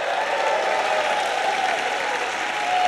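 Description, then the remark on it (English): An audience claps steadily for about three seconds, a dense, even wash of many hands with no pauses, staying loud from start to finish and swelling slightly at the end. “Well, I think everybody clap on that.”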